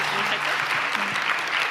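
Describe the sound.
Steady applause from a crowd, a dense, even wash of many hands clapping at once, with faint voices murmuring underneath.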